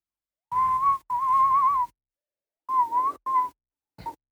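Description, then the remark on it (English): Someone whistles a short tune, a few clear wavering phrases separated by brief pauses, ending on a quick final note, with no talking. “Whistling wonderful.”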